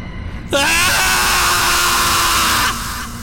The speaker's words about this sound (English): A scream finally flew out of his mouth, one fed by ensuing madness.